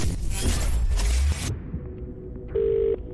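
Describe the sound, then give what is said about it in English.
A burst of rushing noise cuts off, then a phone line's ringback tone sounds on a call placed to a radio contest entrant, a steady electronic ring that stops and starts in short bursts, clear and fairly loud with no talking. “One ring. Two rings.”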